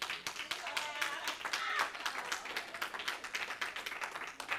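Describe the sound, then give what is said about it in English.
Soft, steady clapping runs throughout, a quick train of light claps like a small group applauding gently, with faint voices murmuring underneath near the start. “That was just a soft clap. Soft clapping.”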